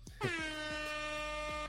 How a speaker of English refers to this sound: I think somebody had asked for an air horn sound effect, so there it is. I didn't have a good time to use it, but I do have one. It's always a good time to use air horn.